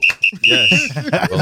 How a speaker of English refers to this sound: Whistle.